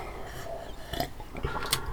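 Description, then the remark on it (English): A quick, wet slurp of hot tea, with a couple of short noisy bursts of sipping and swallowing against a quiet background, and no talking. “Dang, just need a fucking sip.”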